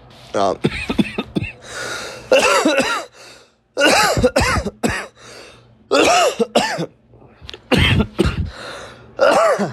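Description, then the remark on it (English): Someone coughs and clears their throat again and again in rough bursts, with strained voiced sounds running between the coughs, after smoking and clearing a whole bowl. “That's why I be coughing all the time, y'all.”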